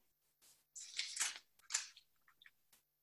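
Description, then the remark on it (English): Crisp crinkling and rustling of a folded paper raffle slip being pulled open to read out the winner's name, two main bursts of crackle followed by a few faint small rustles, with no voices. “And the winner is, a little trouble opening the paper, 1 second.”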